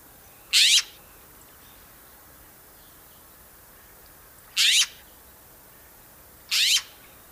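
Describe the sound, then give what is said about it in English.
Three harsh, rasping upward squawks from a jay, its most common call, loud, spaced unevenly across a quiet background with long pauses between calls. “The most common call is a harsh upward squawk.”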